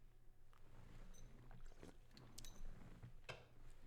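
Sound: sipping an energy drink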